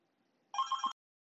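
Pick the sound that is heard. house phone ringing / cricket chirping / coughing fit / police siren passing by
house phone ringing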